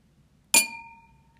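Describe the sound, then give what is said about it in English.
A single bright clink of wine glasses touching in a hotel room, with a sharp attack and a clear high ringing tone that slowly fades over the next second. “I got the wine glasses from downstairs.”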